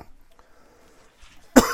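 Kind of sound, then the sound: human body sound, cough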